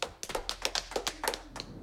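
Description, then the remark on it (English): An audience, asked to give five claps, claps in a quick, slightly uneven burst, around a dozen sharp, bright slaps over under two seconds, as if a few people clap out of sync. Fairly quiet, with no talking. “Give it 5 claps, everybody.”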